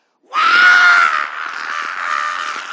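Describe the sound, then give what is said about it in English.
A voice imitates a bobcat-like scream heard when a boy grabbed a preacher in a headlock: one loud, raspy, high-pitched wail that starts suddenly, holds steady for over two seconds, then eases slightly in strength while staying harsh to the end. “And it sounded like a bobcat.”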